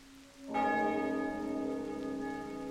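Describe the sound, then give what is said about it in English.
A single deep bell strike rings out after a brief low hum, its rich overtones sustaining and slowly fading in a long, resonant toll, a sound effect for the spell toll the dead cast at a wolf. “The one that did not knock her down, the one that did not get hit with cone or ray of frost, toll the dead.”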